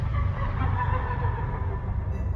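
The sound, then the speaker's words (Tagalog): An eerie night creature's call, which locals name kukuk after its sound, coming from a spot of dense bamboo not far away; loud and heard alone as a steady, droning, fowl-like cry that carries on without a break, with no voices present. “Tinatawag po nila itong kukuk dahil sa huni na ginagawa nito.”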